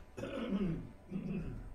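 A rough throat clearing followed by a second shorter cough-like rasp, two bursts in under two seconds with no talking.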